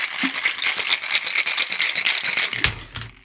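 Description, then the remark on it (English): A cocktail shaker is shaken hard, ice rattling in a fast, steady rhythm of bright clacks, then a sudden sharp knock as the shaking stops and a low rumble trails off. “So time to shake this puppy up.”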